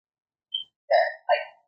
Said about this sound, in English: Is that your fire alarm chirping or is that my fire alarm chirping? That's probably mine. Okay. I've been hearing it. I wasn't sure if it was me.